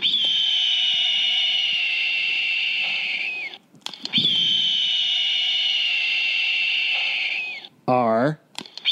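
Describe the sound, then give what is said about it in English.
Two long, steady high-pitched censor bleeps, each lasting a few seconds with a short break between, followed by a brief fragment of a speaking voice at the end. “I think you maybe over bleeped that.”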